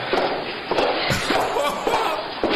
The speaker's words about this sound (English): But here's the doors open. There's those double doors. And here it comes.